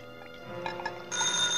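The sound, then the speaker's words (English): A telephone rings at night in an empty office building eight stories up, its bright electronic trill swelling louder and steadier near the end, with no one talking. “And that was the call I should have never answered. But at night, eight stories up in an empty office building, that ringing sounded urgent.”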